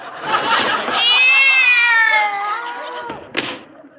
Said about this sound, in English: There's nothing in there but a cat.